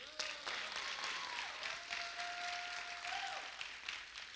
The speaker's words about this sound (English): Can you give her a big old clap?